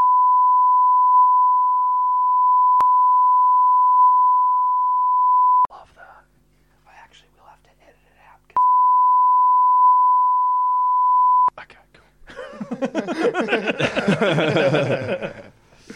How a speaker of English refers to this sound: I just put a beep over the whole thing. Yeah, and if he didn't beep it, that's his fuck up.